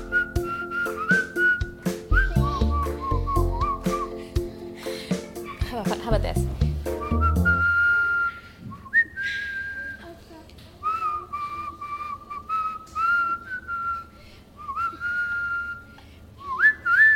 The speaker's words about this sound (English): Could you do it? Come on over here, Mom. Can you whistle? Do it, Mama. Do it. Do it!